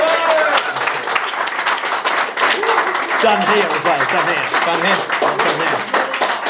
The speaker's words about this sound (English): Have a round of applause for our favourite podcast guest ever, Brian Blessed, please.